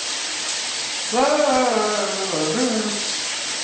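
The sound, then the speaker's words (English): Shower water runs in a steady hiss throughout, and partway through a person's voice joins in with a sustained, tuneful vocal sound over the spray. “The water just stopped in here.”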